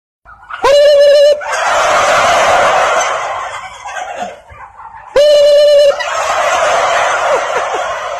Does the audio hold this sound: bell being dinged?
no